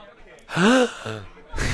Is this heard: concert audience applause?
no